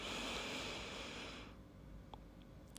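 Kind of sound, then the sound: human body sound, slow deep inhale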